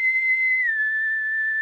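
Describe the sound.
A person whistles a short, clear two-note phrase likened to the Mockingjay whistle from The Hunger Games: one steady, fairly loud pitch held, then gliding down to a slightly lower note that lingers. No talking.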